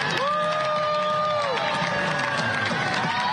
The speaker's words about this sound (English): That's booing. Yes.